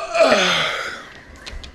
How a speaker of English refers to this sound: I'm sorry, I yawn.